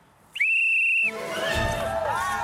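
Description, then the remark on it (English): A single sharp, loud whistle blast lasting about half a second, blown to start a race, followed by a noisy mix of background sounds and faint voices. “I'm going to blow my whistles. Very official. Ready? Wait. Set.”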